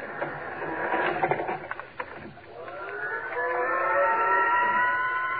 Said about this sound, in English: You can't hardly feel the elevator moving.